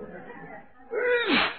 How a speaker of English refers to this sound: Well, I didn't, and there's no one else in this bedroom. Oh, there. Now, how do you explain that second sneeze?